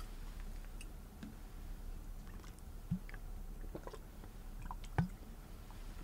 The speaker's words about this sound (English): All right, let me get a little bit of water here.